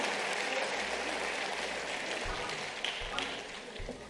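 An audience claps together in sustained, dense applause for the choir musicians, a steady wash of many hands at moderate volume with a few sharper bursts near the end.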